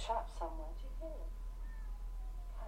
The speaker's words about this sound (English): There's a cat meowing. I can hear that. I can hear it now.